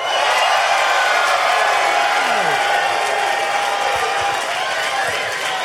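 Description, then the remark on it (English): A large crowd at the ReasonCon convention in Hickory, North Carolina roars steadily, with dense applause and cheering sustained at a constant loud level throughout, a few whoops rising above the wash of sound. “To an incredibly enthusiastic crowd at ReasonCon in Hickory, North.”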